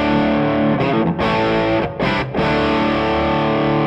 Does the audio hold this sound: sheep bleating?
no